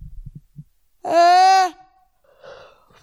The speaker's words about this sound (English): I yawned. Were you guys scared when you heard that me screaming like that? It sounded like I got hurt.